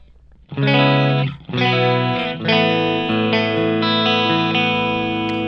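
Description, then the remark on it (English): A clean electric guitar tone through an amp head on its Fender-style USA setting, into a Jet City ISO 2 isolation cabinet and a Hughes & Kettner Redbox 5, the tones blended, playing a few loud strummed chords that ring out and sustain, with the later notes shifting gently. There is no talking. “So here is the clean tone.”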